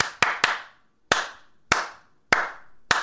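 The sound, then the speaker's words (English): Six sharp hand claps mimicking beaver tail slaps, meant as Morse code for SOS: a quick pair, then four evenly spaced claps, each with a brief ringing tail. No one speaks. “That's classic Morse code for SOS.”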